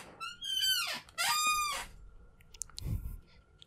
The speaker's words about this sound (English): Well, if you don't get a new chair, get some fucking WD-40. Because holy shit, your chair squeaks so much every episode.